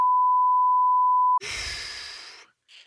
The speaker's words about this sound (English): We'll beep that bit out as well. Yeah, beep that out.